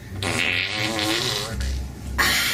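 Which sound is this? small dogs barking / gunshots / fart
fart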